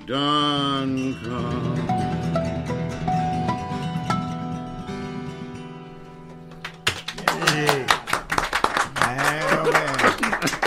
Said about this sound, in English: That is some very generous applause. I tell you what, well, y'all definitely deserve it.